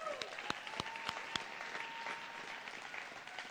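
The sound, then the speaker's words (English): A church audience breaks into steady, dense applause for the worship team after a time of worship, broad and continuous, with a few sharp louder claps standing out and a faint sustained tone lingering underneath. “Let's hear it for our worship team.”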